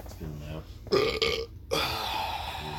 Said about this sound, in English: Had to get a burp in the air somewhere.